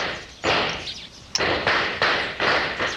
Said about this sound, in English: There's a noise that ought to be familiar to you. Gunshots.